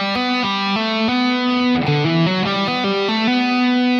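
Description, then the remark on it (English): A distorted electric guitar plays a smooth, flowing legato lick on the fifth string, hammering on and pulling off between frets 5, 7 and 9, notes sliding between pitches in a steady rhythm, with no talking. “And then when I get here, I'm doing a hammer-on from 5 to 9 and then a pull-off again, and then playing 7 and 9.”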